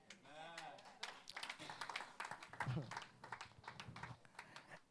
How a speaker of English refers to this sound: Oh, if you are clapping, clap properly.